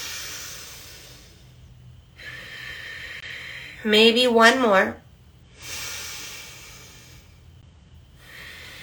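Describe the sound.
Several long, forceful hissing warrior's-breath exhales in a breathing exercise, each after an inhale through the nose, steady, each lasting over a second with short pauses between, and a brief spoken phrase in the middle.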